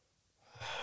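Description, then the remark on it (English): A single breathy intake of air swells up from near silence, getting louder and airier toward the end as a tired person yawns. No one speaks. “I'm yawning, y'all.”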